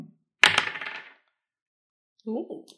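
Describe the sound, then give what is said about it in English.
Dice rolled in a game clatter onto a table in a sharp burst, rattling briefly before settling into silence and coming up a 12; a short murmured voice follows a moment later. “rolled a 12. And it only makes things worse because I didn't have my dice.”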